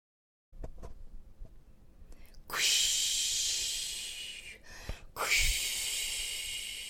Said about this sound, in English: That's the sound we usually hear in the Salish Sea when the orcas are near. Quish, quish, as they come up for air. It's a thrill for everyone.